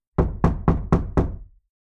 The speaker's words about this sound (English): can you please just knock?